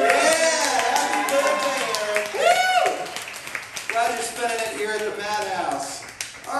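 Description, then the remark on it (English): A crowd claps and cheers steadily, the applause a dense, continuous patter mixed with loud overlapping voices and whoops that rise and fall throughout. “Would you give him an extra round of applause for that?”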